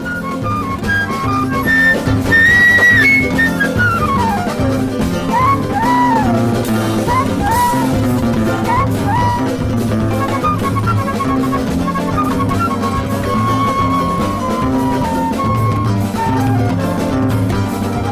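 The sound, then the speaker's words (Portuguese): Lively choro music with a flute carrying an ornamented, quick melody over a full accompaniment of strummed strings and bass, playing steadily and loudly throughout without any voices. “esse mestre maravilhoso da flauta.”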